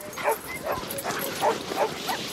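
A pack of sled huskies barks and yips in quick, overlapping bursts, about six sharp calls in a couple of seconds, over a steady outdoor background hiss.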